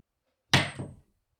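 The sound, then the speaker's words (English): A sharp clack of a slammer striking a stack of pogs, knocking the stack over without flipping any pogs, followed by a brief second clatter as the discs scatter, then silence. No voices. “Paul knocked over the stack again, but did not flip any over.”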